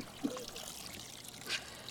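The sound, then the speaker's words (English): Water trickles and drips faintly from a squeezed mass of wet newspaper, shredded into long, thin strips and soaked in a bucket of water for worm bin bedding, with a couple of brief splashy spurts over a soft, continuous dribble. Quiet. “Fill a bucket full of water, you know, shred your newspaper in long, thin strips, and then you just toss it in there. Squeeze out the water, squeeze it out.”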